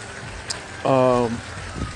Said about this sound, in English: You all hear some noises in the background. It's raining. I'm outside enjoying this rain.